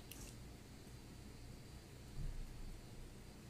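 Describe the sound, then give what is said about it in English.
Heavy rain pours down in a steady, continuous hiss with a low rumbling undertone, fairly quiet, briefly swelling for a moment before settling back. No voices. “That's pouring down rain.”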